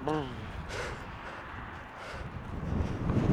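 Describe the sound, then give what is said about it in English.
Strong wind buffets the microphone outdoors with a steady low rumble that swells louder toward the end, with a brief bit of voice at the very start. “Oh god, it is windy.”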